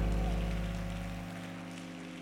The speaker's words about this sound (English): Praise God. Somebody clap your hands one more time to the Lord.